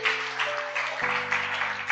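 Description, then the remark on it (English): A church audience claps steadily in praise to the Lord in a dense, continuous wash of applause, with sustained organ-like chords changing underneath, the clapping swelling slightly toward the end. “Give the Lord a mighty clap of.”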